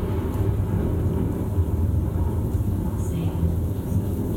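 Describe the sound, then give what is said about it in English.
Heavy rain pouring down in a steady, dense roar, with a deep rumbling undertone that stays loud and unbroken throughout. “Boy, look at it come down.”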